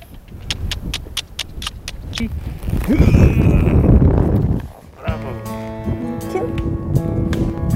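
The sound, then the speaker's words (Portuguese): Steady clip-clop of horse hooves striking hard ground in an even walking rhythm during a horseback ride through Monument Valley, followed by a person talking as the hoofbeats carry on more faintly underneath. “Estamos passando por Monument Valley agora e vamos fazer um passeio a cavalo.”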